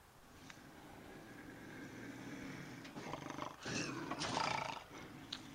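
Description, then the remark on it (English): A faint bobcat growl rises out of a hissy outdoor background, two rough snarling bursts in the last few seconds, with no talking. “I know it sounds crazy, but that sounded like a bobcat.”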